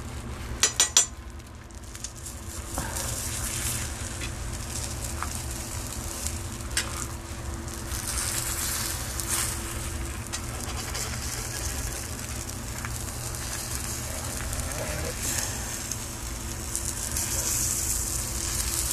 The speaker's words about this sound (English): There we go, you hear that? Break the yolk a little bit. Alright. And you break the yolk, you throw in some black pepper on top of that. You hear that sizzle? I really hope you hear that sizzle.